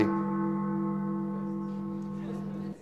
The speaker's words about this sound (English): And we believe that, what was that? That bell disturbed me, right?